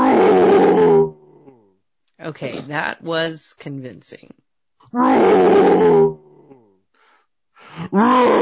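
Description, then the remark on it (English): Three loud, gravelly roaring bursts, each about a second long, as a person's voice imitates a bear roar, with a brief stretch of talking between the first two. “You're obviously not a bear, …. You're not even doing a roar.”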